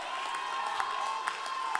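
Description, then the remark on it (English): A church audience shouting and cheering together during a preacher's sermon at night, a steady, dense roar with a few sharper bursts of voices rising out of the crowd noise. “And you can laugh at the folks shouting down here, but when God really gets a hold of you, you'll shout too.”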